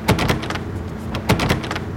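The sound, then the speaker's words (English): In a video game set in the Pacific Northwest, a door handle is rattled and jiggled in two quick bursts about a second apart, with clattering metallic clicks as someone tries a locked door. “And your endless supply of locked doors.”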